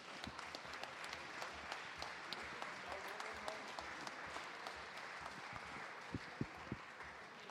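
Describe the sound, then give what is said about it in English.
An audience applauds steadily to welcome James Pearce, chief correspondent for Liverpool FC for the Liverpool Echo: dense overlapping claps at a fairly loud, even level, with a few sharper individual claps standing out near the end. “So please give a big round of applause to the chief correspondent for Liverpool FC, for the Liverpool Echo, Mr.”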